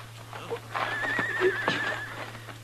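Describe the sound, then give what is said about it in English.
A horse whinnies in a long, wavering call while hooves clop a few times, with a steady low hum underneath and no talking. “I'll take my horse then, Ellen.”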